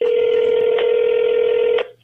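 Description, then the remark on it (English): A steady, unbroken telephone tone hums at one mid pitch with two faint clicks along the way, then cuts off abruptly after almost two seconds, as a call connects. No one speaks. “Do you want me to play your call first or you want to do your story first?”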